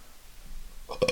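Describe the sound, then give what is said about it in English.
A single short, throaty burp from a person who has eaten a lot of chips bursts out near the end after a moment of near silence, fairly loud, with no talking around it. “I'm farting, I'm burping.”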